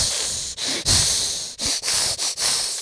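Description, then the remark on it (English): A person hisses through their teeth in a quick series of about six or seven sharp, breathy bursts, steady and fairly loud, broken by short pauses, with no talking. “We hiss though.”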